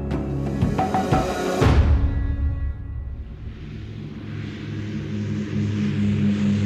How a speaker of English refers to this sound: At 7:15 a.m., on July the 18th, 1936, a small Dragon Rapid airplane takes off from Croydon Airfield, just south of London, England.